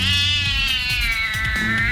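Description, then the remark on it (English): A black cat lets out a loud, sustained screech as it leaps to attack a cobra, a harsh, wavering yowl held for nearly two seconds with no pause, intense, with no talking. “I heard a scream behind me and saw a flash of darkness.”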